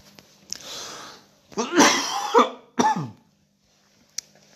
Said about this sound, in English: I promise my coronavirus is much better than it has been for the last several weeks. I've been coughing and just absolutely hacking. It's been absolutely horrible.